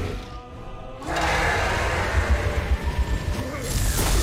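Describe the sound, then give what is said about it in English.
In a video game cinematic, after a hushed opening with breathing, a sudden bright crash of shattering glass bursts in, followed by a loud, sustained roar of rumbling, booming cinematic sound that swells again near the end. “Dude, even the breath and the glass breaking.”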